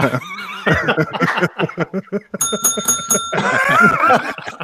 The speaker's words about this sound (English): That's the first time that got brought out. I brought my teat shaped bell out for that one.